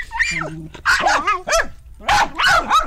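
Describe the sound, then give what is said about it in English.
Several Dandy Dinmont Terriers bark in quick, high-pitched bursts, with a whiny yelp at the start and a few overlapping yaps that come in clusters. “her troupe of Dandy Dinmont Terriers, which she dressed in tartan hats and bonnets to perform to Highland music, raising money for local charities.”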